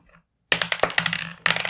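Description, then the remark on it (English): Players roll dice for a tabletop role-playing game, the dice clattering and tumbling across a hard tabletop in a busy rattle lasting about a second, followed by a fresh burst of clicking as more dice land. “Let's grab dice.”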